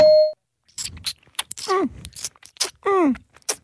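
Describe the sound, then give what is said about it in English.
A single clear, steady timer ding rings out at the very start, marking the start of a 20-second timed round in a game, and cuts off quickly, followed by a stretch of voiced, groaning vocal sounds. “Yeah, the ding signifies the start of the time.”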